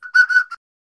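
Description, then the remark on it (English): A short burst of whistle notes, three quick steady-pitched toots run almost together, clear, lasting about half a second before silence. No voices. “Oh, you've got your whistle there. You want to play as one?”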